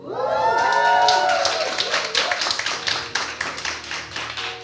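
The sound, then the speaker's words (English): An audience at a church gathering breaks into loud applause at the announcement that the speaker is on Instagram, rapid overlapping claps mixed with a few rising cheers and whoops at the start, then steady clapping that thins slightly toward the end. “Imagine, applause for Instagram means that you know I've not been there for a long time.”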